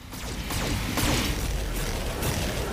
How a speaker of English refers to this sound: Well, time to fire all of our lasers at a truck.